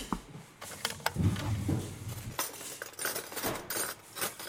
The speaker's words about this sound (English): The porridge is almost ready to eat. The porridge pours into the bowl.